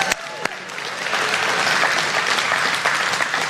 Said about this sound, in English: Clap and say hallelujah.